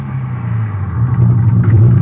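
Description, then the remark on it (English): A car engine rumbles with a steady low drone, loud, staying strong throughout with a slight rise toward the end, as the car slows and stops on an empty highway near Odessa at almost 4 a.m. No one speaks. “Guess I can stop any place on this highway.”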